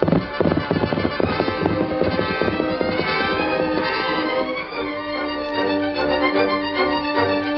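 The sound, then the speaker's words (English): Rapid, rhythmic galloping hoofbeats of a powerful horse, Silver, pound beneath a swelling orchestral score, most distinct in the opening seconds before the music takes over and carries on alone. “As the powerful horse covered the miles, darkness gave way to dawn.”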